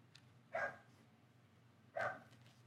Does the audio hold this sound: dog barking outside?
yes